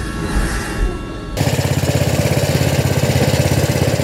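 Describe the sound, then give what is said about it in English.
A snowblower engine runs loud and steady, its small motor chugging in a rapid, even pulse after a brief stretch of rougher noise at the start, during a snowfall of as much as 20 centimeters. “With as much as 20 centimeters of the white stuff falling, it was a good time to own a snowblower.”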